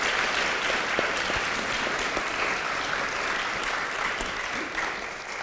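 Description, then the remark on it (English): Sustained applause from a crowd for a woman who has just spoken, in the morning: a dense, steady wash of many hands clapping at an even loudness for several seconds, with no voices standing out. “Give her a round of applause this morning.”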